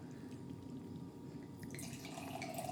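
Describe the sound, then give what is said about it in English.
A frothy red wine of 10% alcohol is poured into a glass in a steady, continuous stream, the gurgle turning brighter and more splashy toward the end. No one speaks. “So I will pour that because we got to be drinking it while we're talking about it.”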